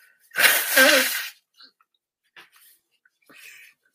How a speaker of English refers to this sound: It's like you blow your nose. Where the fuck does it all come from? You know what I mean? It's just like you think, I must have got rid of it all. But no, it just keeps on coming, which is crazy.